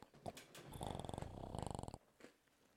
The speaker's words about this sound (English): I'm awake. You're snoring.